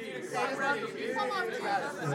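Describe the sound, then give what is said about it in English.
A lively crowd chatters all at once, a dense, steady wash of overlapping voices with no single speaker standing out, loud and continuous throughout. “They're a little rowdy right now.”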